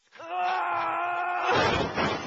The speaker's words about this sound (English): Oh, shit, Trent, you knocked over my bongos.